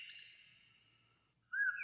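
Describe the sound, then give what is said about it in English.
A bird calls frantically for help with a long, shrill, warbling note, breaks off briefly, then lets out a sharper rising chirp. The calls are fairly loud, with no voices. “He calls frantically to all the other bird friends.”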